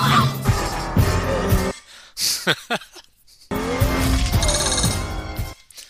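A Lamborghini sports car roars loudly with tires squealing in two long bursts, separated by a short gap of quick, sharp screeches, with no one talking.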